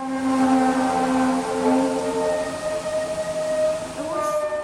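Freight trains shunting, slowing and changing direction, with drawn-out metallic squeals and groaning tones layered over a steady rumble, fairly loud, shifting pitch near the end. No one speaks.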